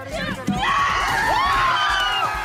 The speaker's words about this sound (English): This time, it's one of Christopher Columbus in Baltimore, Maryland. Protesters and supporters took the landmark down and threw it overboard in the inner harbor to a loud roar of celebration.